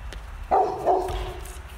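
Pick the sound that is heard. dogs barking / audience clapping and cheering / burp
dogs barking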